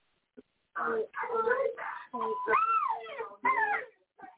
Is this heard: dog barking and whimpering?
yes